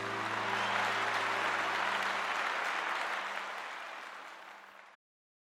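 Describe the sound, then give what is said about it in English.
An audience bursts into sustained applause with some cheering for a woman singer finishing her performance, a dense, steady wash of clapping that eases slightly before cutting off abruptly after about five seconds. “The audience always broke into cheers and applause when she was finished.”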